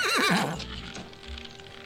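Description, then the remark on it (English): A horse lets out a loud, quavering whinny that trails downward, followed by a few soft, scattered hoof thuds. No one speaks. “Go saddle Monsieur's horse.”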